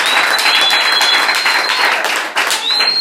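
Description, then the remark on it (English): An audience claps their hands loudly for Jesus Christ in a dense, continuous wash of applause, with a steady high whistle-like tone running through much of it and a brief dip near the end. “Clap your hands for Jesus Christ.”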